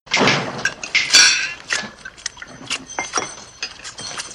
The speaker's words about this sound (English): Maddie tries to talk to Rooster, but he slams the jailhouse door in her face.